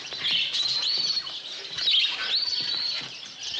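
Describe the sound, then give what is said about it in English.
A busy chorus of small caged birds, redbirds also called strawberry finches, chirping and twittering together in a pet shop, with high, bright calls overlapping continuously. “Aren't those lovebirds? No, those are redbirds.”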